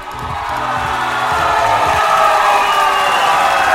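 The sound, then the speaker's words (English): A large crowd cheers and roars loudly and steadily, a dense wash of shouting voices that swells slightly and holds for several seconds, with a low rhythmic thumping underneath at the start. “What a crowd.”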